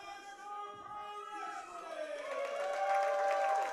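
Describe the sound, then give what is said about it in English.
A wrestling arena crowd at the Firestar Pro Wrestling Blackout show cheers and roars as the lights go down and a caped wrestler makes his way to the ring, the noise swelling steadily louder over a few seconds into a sustained, dense wall of excited voices. “You hear the crowd.”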